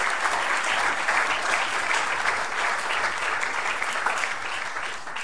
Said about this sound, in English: I wonder if we could give a round of applause to our two speakers